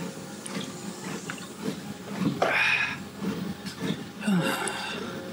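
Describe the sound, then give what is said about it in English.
Drinking sounds: a few sloshing gulps and swallows of water from a bottle by a person during a walk, with two stronger bursts of liquid movement over a steady low background hum. “And I'm getting some water into me.”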